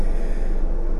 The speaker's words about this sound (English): You can probably hear the aircon in the background.